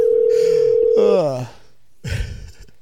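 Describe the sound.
A phone call is placed: a steady, loud telephone dial tone hums for about a second, then breaks off as a voice cuts in; after a short pause, brief muffled speech follows.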